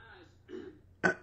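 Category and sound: human body sound, coughing attack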